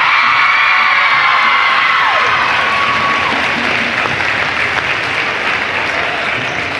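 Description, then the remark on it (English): Loud, steady applause from a large crowd at Columbia Central High School for the ladies' teams and the all-tournament team fills the whole stretch, with scattered whistles and cheers rising over the dense clapping. “Ladies and gentlemen, a big round of applause for these ladies' teams who fought hard to get where they are today.”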